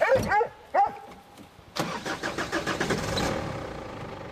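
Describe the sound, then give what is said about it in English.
A Hunterway dog named Sky gives a few sharp barks, then a vehicle engine cranks to life and settles into a rough, pulsing rumble for a steep 2-kilometre journey on an old logging track to a cottage. No one speaks. “With the Hunterway Sky following behind, it's a steep 2 kilometre journey on the old logging track to the cottage”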